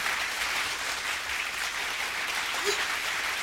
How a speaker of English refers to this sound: Round of applause.